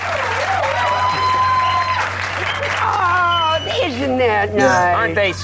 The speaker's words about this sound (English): Aren't they sweet? Yeah. Aren't they sweet to applaud and cheer like that?